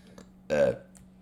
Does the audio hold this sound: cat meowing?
no